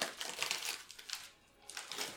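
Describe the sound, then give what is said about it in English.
Crisp crinkling of a big silica gel packet filled with little glass-like chips, with a rapid run of rustles and crackles that briefly eases off before picking up again near the end. “They are little glass chips. This big silica packet, so it doesn't.”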